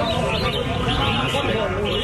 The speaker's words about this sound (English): Okay, how much to buy a champion bird? From the bird singing competition in Thailand.